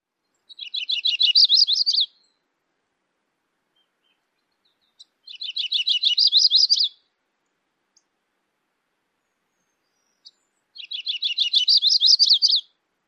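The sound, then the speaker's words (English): A yellow-rumped warbler sings three times with pauses between, each song a loose trill of high notes that rises in pitch and quickens toward the end, clear and alone against silence. “Another version of the yellow-rumped warbler song is very similar, but the last few phrases of the song usually change in pitch and speed up slightly.”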